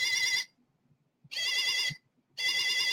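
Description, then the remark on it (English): An electronic energy stick toy, held by one end so its lights flash, gives three bursts of warbling, buzzy beeping, each about half a second long, with short silent gaps between them. The tone is bright and high, with a fast wobble. “If I hold the other end of it, you can see the lights flash and it beeps.”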